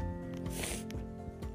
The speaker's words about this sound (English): If you hear me sniffling, I apologize. My nose has been running all morning and it's very frustrating. So if you hear that noise, I apologize.